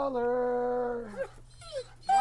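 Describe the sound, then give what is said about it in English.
A dog named Mahler lets out a long, high, wavering whimper that slides downward, followed by a couple of shorter whiny yelps, with a low steady hum underneath. “No, Mahler, don't get upset.”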